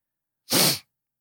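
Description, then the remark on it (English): A single short, sharp sniffle, a loud breathy burst of nasal noise lasting about a third of a second, with silence on either side and no talking. “I'm sorry if I have the sniffles.”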